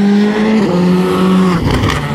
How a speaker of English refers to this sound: Here we go. Yeah, here he comes. Yep. Right, this will be a fiesta again. Will this be Elvin? Will this be Sunninen? Oh no, it's a WRC2 car.